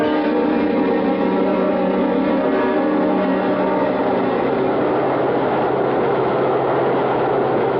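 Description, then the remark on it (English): A subway train rumbles steadily, with a sustained mechanical hum and droning engine tones that hold at a constant, fairly loud level throughout, without any voices. “Come on, we're at the subway.”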